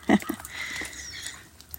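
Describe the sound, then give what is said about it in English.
Sleet, a mix of snow and rain, patters softly and steadily on the roof of a small red willow cedar meditation hut on the North Shore of Lake Superior, a fine, quiet spattering texture that follows a brief low thump at the very start. “It's snow raining here today.”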